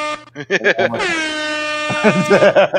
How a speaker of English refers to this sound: Okay. Sorry, guys. I forgot. Yes. So air horns from now on.